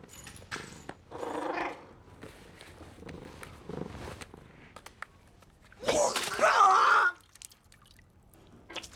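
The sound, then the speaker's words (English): A person retches and vomits: a brief gagging heave, a few quieter gurgles, then a louder, longer wet retch with splashing and throaty gurgling before it trails off. “Now, about vomiting. That's very good vomiting.”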